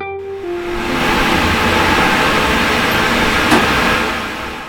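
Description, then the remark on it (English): A dry cleaning machine at the Mall Dry Cleaners tumbles clothes like a washing machine but without water, using the liquid perchloroethylene, running with a steady, loud mechanical rumble and whir, a low hum at the start and one brief knock partway through, with no voices. “It goes through a 35 to 45 minute length process of tumbling like a washing machine does, but there's no water involved.”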